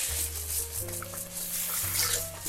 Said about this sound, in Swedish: Så jag tappar ner lite vatten i den så att vi kan hälla över det i vårt kok